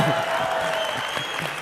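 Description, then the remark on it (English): A large audience at Southland Church bursts into steady, dense applause for the pastor coming up, many hands clapping at once in a sustained wash of sound, with a faint cheer rising briefly above the clapping. “So whenever I come up here, feel free to cheer.”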